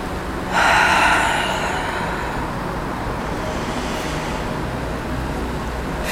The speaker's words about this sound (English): Take the biggest inhale you've taken all day. And release it with an audible. Let's do that two more times. Big inhale. Last time.